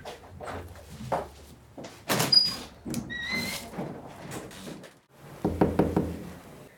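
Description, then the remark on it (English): Firm knocking on the big red wooden front door of East House at Jesus College, which holds the college's archives: scattered thuds and clunks at first, then a quick burst of several sharp raps near the end, with no one speaking. “Okay, here we are, big red door into East House at Jesus College, which holds the college's archives.”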